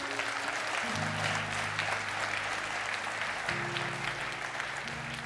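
A church audience gives the Lord a big hand clap, clapping steadily and loudly for about five seconds, a dense continuous patter of many hands, while sustained keyboard chords shift underneath.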